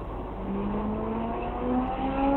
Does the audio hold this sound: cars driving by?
yes